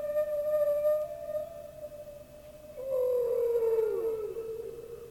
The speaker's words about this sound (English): Whales. Yep.